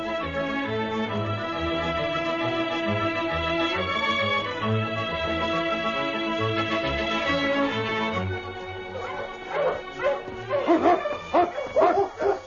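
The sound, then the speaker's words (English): A sustained orchestral passage gives way to a pack of sled dogs barking and yipping excitedly in loud, overlapping bursts over the final few seconds; the sled team, led by Yukon King, is running over the frozen surface of the Klondike. “The team was flying over the frozen surface of the Klondike, every dog anxious to get home.”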